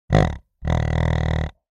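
A wild boar grunts twice with nothing else around: a short, deep grunt, then a longer, rasping, buzzy one. Both are loud, low-pitched, and rough.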